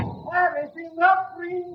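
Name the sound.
door opening sound effect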